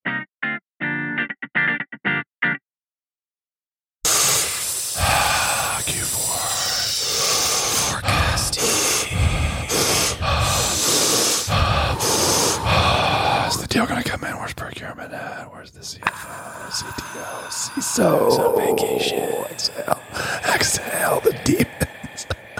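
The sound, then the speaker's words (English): Slow, heavy breaths drawn in and pushed out, a breathy hiss rising and falling in long deliberate cycles after a brief electronic intro, as a man does breath work. “Man, I'm just breathing. Breathing, getting in that oxygen.”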